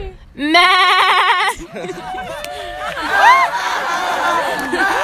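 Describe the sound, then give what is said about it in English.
A person imitates a cow's moo as the punchline of an "interrupting cow" knock-knock joke, a loud, wavering, bleat-like call lasting about a second, then several people break into overlapping chatter and laughter. “Interrupting cow! Interrupting cow!”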